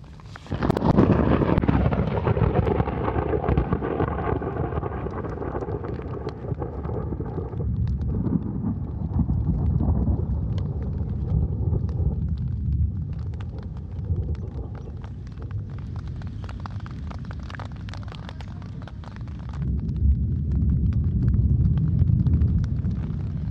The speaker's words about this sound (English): Yeah, thunderstorm in the Drakensberg.